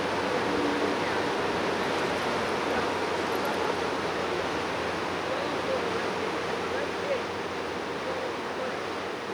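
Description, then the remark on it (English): A river rushes past a snowy walking path in a steady, unbroken wash of flowing water, loud, with no pauses or other distinct sounds standing out. “You can hear the water flowing past and the snow crunching beneath our feet as we walk on the path.”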